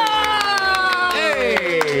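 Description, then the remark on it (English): Steady hand claps, about four per second, keep an even beat over a sustained, melodic tone whose pitch glides downward partway through. “Oh, do the clap again.”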